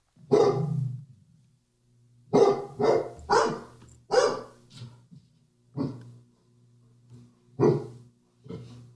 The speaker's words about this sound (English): And there should be a few examples of the same style of barking, but different breeds, which I think is interesting. Okay, so different tones maybe, eh? So is that two dogs barking or is that just one? That's two.